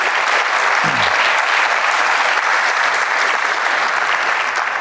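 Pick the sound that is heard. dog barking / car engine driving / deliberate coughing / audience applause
audience applause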